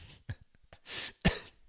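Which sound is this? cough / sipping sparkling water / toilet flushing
cough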